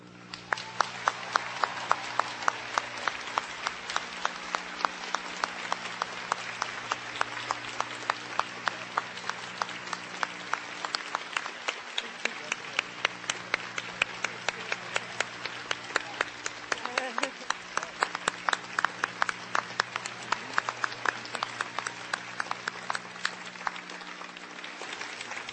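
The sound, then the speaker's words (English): An audience of graduates and guests at a Princeton University commencement applauds the honorary degree recipients steadily for the full length, a dense wash of many hands clapping at a constant, fairly loud level with no speech over it. “Now I would ask all of our honorary degree recipients to stand once more, and I would ask our graduates and guests to join me in applauding together their outstanding accomplishments.”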